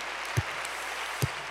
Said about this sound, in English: And thank God for that, and give the Lord a hand clap for it. Amen.